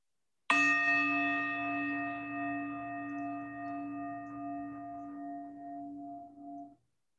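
A single chime is struck once, ringing out clear and bright with steady overtones that sustain and slowly fade over several seconds before cutting off. No voices accompany it.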